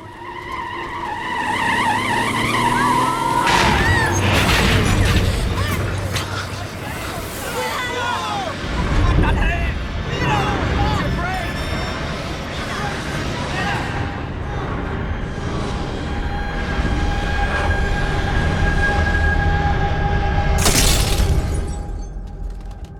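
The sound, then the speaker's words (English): A bus skids and slams head-on into a tram in Mexico City in a violent collision, with screeching, crunching metal and shattering glass amid loud, chaotic noise and background crowd commotion, then a final sharp burst near the end. “The bus collides head-on with a tram. The accident is violent.”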